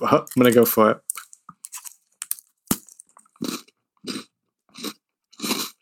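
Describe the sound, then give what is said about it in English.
A brief burst of speech, then crisp crunching of a milk chocolate sandwich biscuit with a wafer inside, like a Kit Kat: several sharp bites followed by four regular, dry crunchy chews, loud. “That sounds like it's good by the crunch alone.”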